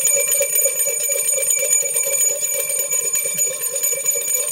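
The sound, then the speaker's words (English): A bright bell rings continuously with a fast, trilling clatter, loud, sustaining its metallic tone for several seconds with no voices, marking a Two Bell Tuesday on the Inside Indiana Sports Now show. “It's a Two Bell Tuesday.”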